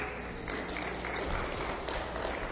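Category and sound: crowd, audience applauding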